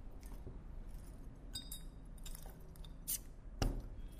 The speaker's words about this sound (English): So, you can hear the jingle of our keys as we use the bottle opener to crack them open.